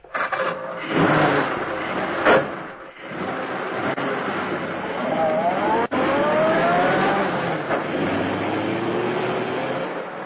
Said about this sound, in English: The two men pushed the automobile down the slope of the road, jumping in when the car began to gather speed.